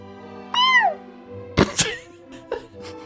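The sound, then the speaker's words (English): A single drawn-out, rising-then-falling meow, a person's voice imitating a cat, clear, followed by a few soft knocks and thumps. “Make the meow sound smaller and higher pitched, and you're not that far off from Artemis.”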